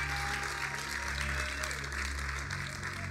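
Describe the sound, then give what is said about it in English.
A crowd claps steadily in a dense, continuous wash of applause, clapping for Jesus, with a low sustained musical drone underneath throughout. “Can you clap for Jesus for making a way where there is no?”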